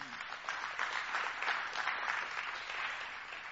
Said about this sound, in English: Because what happened, come on, y'all can clap for that.